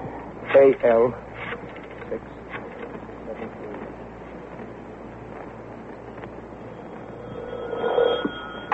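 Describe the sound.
A telephone is dialed to call the YWCA and rings, with two short ring bursts near the start and a steady tone later, over a muffled, slightly noisy background with faint voices.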